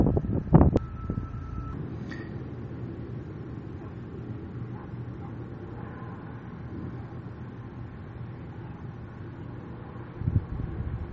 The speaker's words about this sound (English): And, of course, the wind is blowing. I'm trying to reduce wind shear in this episode.